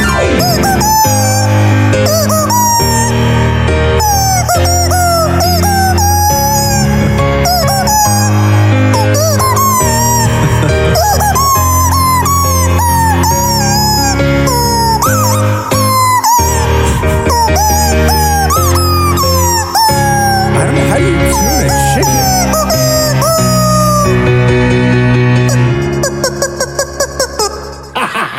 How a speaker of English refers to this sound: if I wanted to hear a guy play …. Yeah. On a rubber chicken